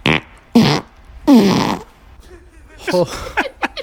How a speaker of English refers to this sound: Here we go. Fart number one. Whose hole?